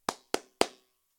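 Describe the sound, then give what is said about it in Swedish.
Three sharp hand claps in a steady, even rhythm, imitating Aaron Ramsdale's clapping penalty tactic, each crisp and bright with a quick decay, followed by a moment of quiet. No one speaks. “Jag ska imitera strafftaktiken, så får ni se hur psykad den blir.”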